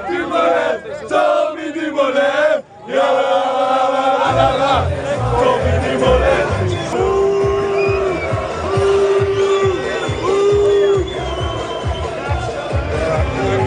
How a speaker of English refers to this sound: we just heard a lot of booing. There was sky, but not even the bus.